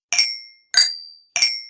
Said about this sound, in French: Moi aussi. Et voilà. On trinque.